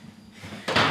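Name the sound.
door being shut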